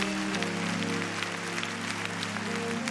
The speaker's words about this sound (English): clap your hands and give praise to Jesus.